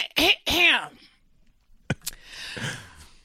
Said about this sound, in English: We are coming to you live from the American Family Insurance Studio inside the Avenue in the heart of downtown Milwaukee. Let me clear my throat.